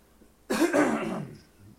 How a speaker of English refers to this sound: I'm going to take these earbuds off for just a second and clear my throat. Hold on, folks. I'm sorry.